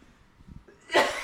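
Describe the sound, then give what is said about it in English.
A woman's sudden harsh cough bursts out loud after a moment of quiet, breathy rustling, part of a coughing fit. “She had a coughing fit.”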